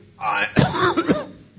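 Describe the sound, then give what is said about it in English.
A short, rough cough from an audience member asking a question after a lecture, one harsh burst trailing into a throaty, voiced rasp, with no talking around it. “The three figures I associate with the Risorgimento, pardon my cough, is Garibaldi, is Mazzini, and then the Prime Minister of Piedmont, Cavour, who seemed to have some relationship with Garibaldi.”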